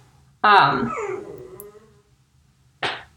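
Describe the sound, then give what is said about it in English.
A dog named Slinky, outside the door, lets out a drawn-out, wavering whimper that slides downward in pitch, followed after a short pause by one brief, sharp yelp. “There's a sassy Slinky outside the door, so I apologize if he is in the background of this episode.”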